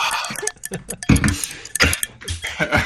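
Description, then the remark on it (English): Acrylic nails tap against the ground in quick, irregular bursts of sharp, bright clicks, fairly loud, with no one speaking over them. “Do you hear my nails against the ground?”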